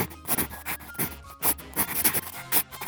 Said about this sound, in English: I'm going to write this down with my handy pencil so you don't forget.